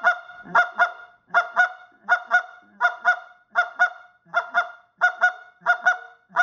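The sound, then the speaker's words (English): A goose call blown in quick paired clucks, a double cluck made by putting more air on the second note, each two-note burst repeating at a steady rhythm about every three-quarters of a second, loud with nothing else behind it. “I'm putting more air on that second note. And that's giving me this double cluck.”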